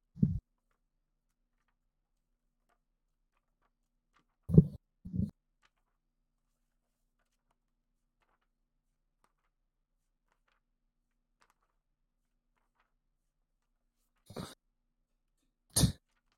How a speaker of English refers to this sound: All you hear is the sound of pages flip.